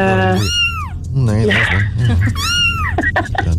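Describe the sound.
A person imitates a cat as a clue to the movie Cats, with two loud, drawn-out, wavering meows separated by a brief strained vocal sound, with no other talking.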